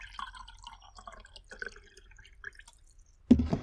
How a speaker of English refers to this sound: All right, hang on. I need to pour myself a cup of coffee today.